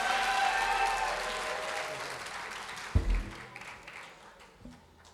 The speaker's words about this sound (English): Clap your hands one more time. You can be seated.